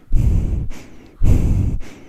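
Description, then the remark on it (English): Heavy breathing straight into a new microphone, two loud rushing breaths with a booming low rumble, each followed by a softer airy exhale, with no talking. “And I'm talking into it too much and breathing into it.”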